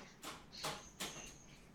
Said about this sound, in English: Yes, it's so loud when you come in and out that dog door.